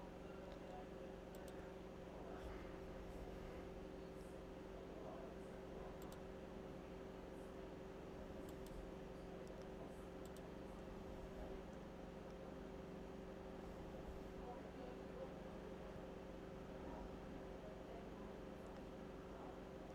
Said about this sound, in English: I don't know how bad the fan sounds in the background. Oh, it's not too bad. And you can also hear my washing machine, I think. That might actually be a bit annoying.